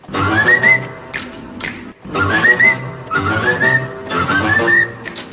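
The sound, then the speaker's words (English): A bird whistles a short, recognisable tune in key, repeating the same melodic phrase several times in loud, clear bursts with brief pauses between them, and no one speaking over it. “So they're not using singing, but rather using whistling.”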